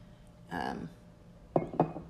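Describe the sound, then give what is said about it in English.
A short splash of High West whiskey being poured into a glass, followed by two sharp glassy clinks about a quarter second apart. “I'm gonna get some in my glass here.”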